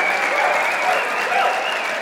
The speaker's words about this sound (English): Can we give her a cheer on? Come on.